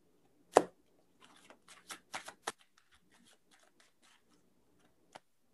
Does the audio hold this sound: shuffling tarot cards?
yes